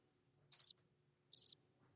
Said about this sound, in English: Crickets.